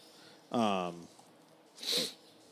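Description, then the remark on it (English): A single sneeze: a short voiced, rising "ah" intake followed about a second later by a loud, breathy, hissing burst. No talking accompanies it. “God bless you, sir.”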